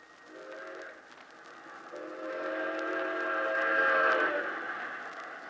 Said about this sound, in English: That train was supposed to be running over him right now.